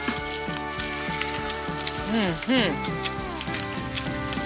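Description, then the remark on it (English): Crab cakes fry in vegetable oil in a hot cast iron skillet, cooking about 3 to 4 minutes per side until golden, a steady frying hiss running the whole time beneath a layer of tonal background music. “Got that sizzle. I mean, as soon as it touched that skillet, I could smell it.”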